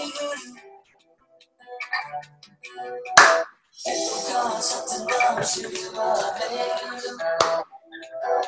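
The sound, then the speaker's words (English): Sharp, loud hand claps land on the eighth beat of a counted eight-beat sequence in a breath exercise, about four seconds apart, over a busy, continuous wash of music-like sound with fainter taps between them. “1, 2, 3, 4, 5, 6, 7, clap.”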